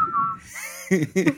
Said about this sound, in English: Oh, we're whistling in the dark. Is that When the Saints Go Marching?